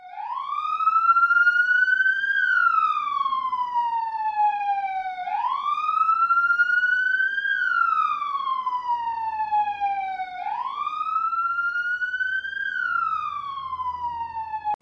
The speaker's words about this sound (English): This story starts with the police siren.